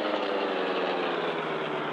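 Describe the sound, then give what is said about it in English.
The engine of the Black Beauty car runs steadily at high speed, a constant, fairly loud drone with a low, even rumble that holds without change and has no voices over it. “Still at high speed, he doubled around until he had again reached the shore road.”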